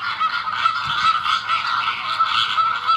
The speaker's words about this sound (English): Sounds like a goose. That is a flamingo. Huh. Yeah. Okay, yep. I had just asked the question, what sound do flamingos make?